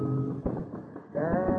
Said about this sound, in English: Nearing Boston, a large flock of sheep driven by a red-faced man in church sleeves blocks the road.